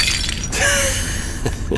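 A porcelain saint figurine is smashed open to search for a message hidden inside. It makes a sharp, bright crash, followed by scattered tinkling fragments settling over the next second or so. Loud, with no voices.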